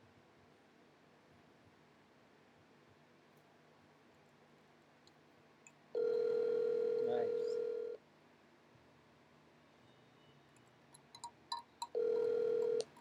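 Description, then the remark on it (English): A phone call rings out with two long, steady ring tones several seconds apart, loud and clear over a quiet line, with a few faint clicks and a brief spoken word between them. “Was that enough ringing for you, asshole?”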